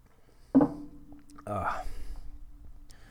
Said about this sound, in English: Hold on, I gotta get another drink of water.